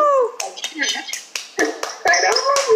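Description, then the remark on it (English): Steady hand clapping, about ten sharp claps in quick, even rhythm, mixed with excited voices whooping and cheering over them. “That's a clap up.”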